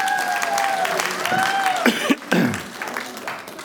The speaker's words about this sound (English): Give him a clap, everybody.